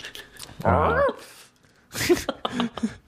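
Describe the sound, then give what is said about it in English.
A dog gives a drawn-out, rising whimper, then after a brief pause lets out a few shorter, breathier whines and snuffles. “That's the dog questioning my claim.”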